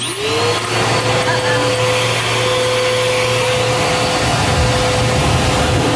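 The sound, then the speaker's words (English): A vacuum cleaner whirs up to speed and holds a loud, steady roar with a rising motor whine, while numbered ping pong balls rattle and tumble inside it through the second half as it sucks up five balls and then a power ball to draw lottery numbers. “All right, so I numbered 70 ping pong balls to represent the power balls, and now we're going to turn on the vacuum. We're going to suck up 5 balls and then the power ball.”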